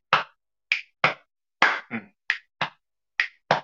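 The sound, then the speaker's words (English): A rhythmic body-percussion pattern of snap, hit, snap, hit, clap: sharp finger snaps, duller hits on the body and hand claps, about nine crisp bursts with short gaps and no talking. “Snap, hit, snap, hit, clap.”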